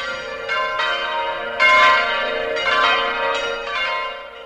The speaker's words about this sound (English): The common prayer is the very essence of Taizé. Three times a day, the bells call pilgrims to pray.